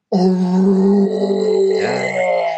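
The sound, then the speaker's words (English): A person imitates a deep troll roar like a chorus of three voices roaring together, about an octave lower than other trolls: a sustained, layered, growling bellow of about two and a half seconds that shifts pitch partway through, loud and steady with no other talk over it. “Like three voices all at once roaring together, and it's about an octave lower than any other troll you've heard.”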